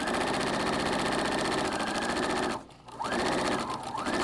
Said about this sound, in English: With no sewing room in her home, she often uses her sewing machine at the kitchen table.